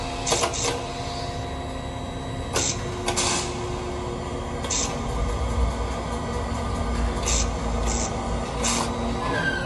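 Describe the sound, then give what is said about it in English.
A steady mechanical drone from the generator of the Twilight Zone Tower of Terror ride at Walt Disney World, heard in its boiler room, with a low rumble and sustained tonal whine, broken every second or two by brief bright hissing, screeching bursts. No voices are present. “And then I wanted to mention my most distinct and favorite sound from Walt Disney World, which is the generator from the Twilight Zone Tower of Terror.”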